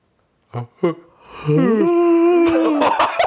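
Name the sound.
person yawning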